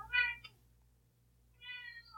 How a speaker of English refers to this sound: Yeah, this is actually the most appropriate time for a cat to interrupt the pod.